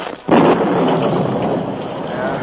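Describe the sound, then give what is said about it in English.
A loud thunderclap from a sudden storm bursts in after a brief lull and rolls on as a dense, steady roar of heavy rain, filling the whole clip with no voices. “As he rode, a sudden storm broke.”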